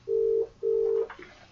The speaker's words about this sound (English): So we're ringing your phone. That we had two calls actually. It's the same number, so hopefully that person will respond and we can get them on there.